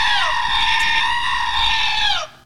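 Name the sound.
goat screaming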